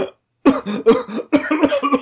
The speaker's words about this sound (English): Sorry, I gasped so hard I choked.